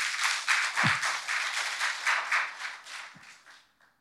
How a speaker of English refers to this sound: People are clapping. I get it. It's encouraging.